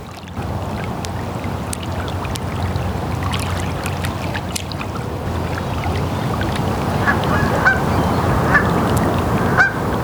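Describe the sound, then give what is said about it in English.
Seagulls call out with harsh, honking cries, sporadic at first and then louder and more frequent toward the end, over a steady wash of water and outdoor rumble. “We all hear the unpleasant calls of seagulls”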